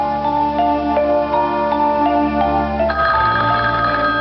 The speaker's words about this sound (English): So this is a couple sitting in their home and the phone rings.